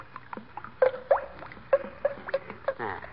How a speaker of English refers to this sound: I go by the gloves. By the what? The gloves. You notice when you pour the paint out how it goes glub, glub, glub?